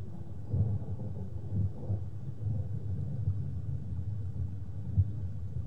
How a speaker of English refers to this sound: Hear the running water, the thunder above.